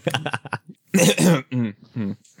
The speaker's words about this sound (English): coughs and, you know, looks to the side.